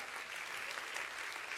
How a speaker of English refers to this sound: Come on, clap your hands. That's good stuff right there.